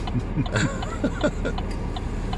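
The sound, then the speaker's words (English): Steady low rumble of street traffic, cars moving along with a continuous road noise, heard while waiting in traffic to turn right, while faint, indistinct voices murmur briefly underneath. “Watching the cars go by.”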